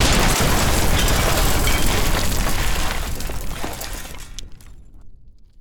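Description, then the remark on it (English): A loud, booming explosion as a cannonball strikes a small wooden boat, bursting into a dense roar of cracking, splintering wood and fire that holds for about three seconds, then fades out with scattered crackles and snaps. “The ninjas all leaped out of the boat and into the water just before it exploded into a mess of splintered wood and fire.”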